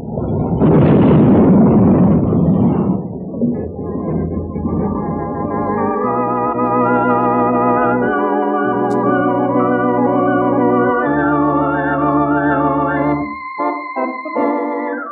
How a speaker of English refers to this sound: There was nothing Cherokee or I could do to stop the engine, and when it plowed into the back end of the work train, it scattered men in a circle 200 yards wide.